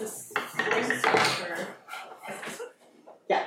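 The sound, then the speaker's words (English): Dishes and cutlery clatter and clink as they are gathered and cleared away, a busy run of bright scraping and knocking clatter with a sharp clank at the end. “Hang on. Clear everything away.”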